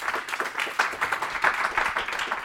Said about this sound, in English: So a massive thanks to Gavin. Round of applause again, if you don't mind.